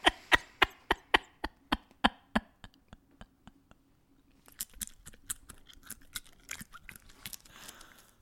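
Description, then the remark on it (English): Crisp crunching of a fish-food snack being chewed: a steady series of sharp bites that slow and fade, then a quicker, messier burst of smaller crunches, with no talking. “Oh, I can definitely hear that crunchy.”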